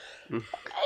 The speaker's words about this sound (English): Makes me sneeze.